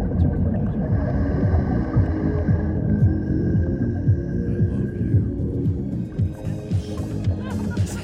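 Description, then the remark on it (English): Whale song over a dense, throbbing low rumble, with long, steady high-pitched tones drawn out for several seconds and fainter mid-pitched moans, continuous and fairly loud throughout. “But take a listen to this whale song here.”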